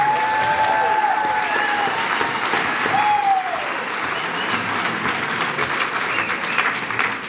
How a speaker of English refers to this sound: But the next Sifritna, they're already planning it. You know, that's how much work goes into it. So I give a round of applause to everybody.